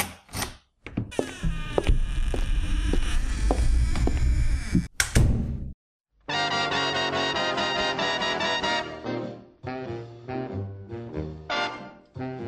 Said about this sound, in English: The door opens and shuts.